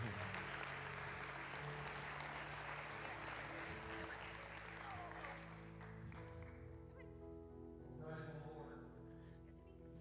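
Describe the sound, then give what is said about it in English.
An audience at a church service applauding after children are presented with their first Bible, a dense wash of clapping for several seconds before thinning out, with a hum of voices and reverberant tone underneath. “All right, give them a great big hand.”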